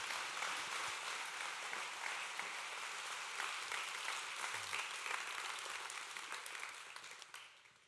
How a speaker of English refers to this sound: Okay, you guys give these guys a big round of applause.